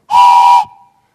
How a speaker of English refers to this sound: Or how about hearing? Maybe a train whistle.